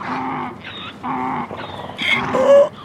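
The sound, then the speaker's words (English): A person imitates a donkey's bray with a rhythmic series of alternating hee-haw cries, harsh and nasal, rising to squeakier, louder high notes toward the end. “I usually have a better donkey than that. Give us a real donkey.”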